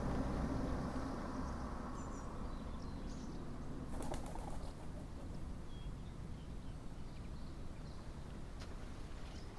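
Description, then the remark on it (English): Swallows and ducks flying overhead along the River Thames: a few soft wingbeat flutters and faint, high twitters rise briefly over a steady, rushing background noise, with no one speaking. “There are swallows and ducks flying overhead”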